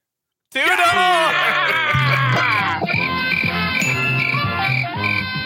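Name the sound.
cricket chirping sound effect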